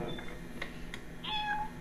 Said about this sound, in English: Where did we get a cat?